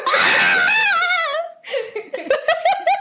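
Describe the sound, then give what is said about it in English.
A voice imitates a screaming baby with a loud, wavering high-pitched wail lasting over a second, followed by shorter, choppy crying bursts. “Baby scream.”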